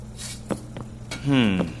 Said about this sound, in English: Okay, but since you're sticking around, how about you help me wash these dishes?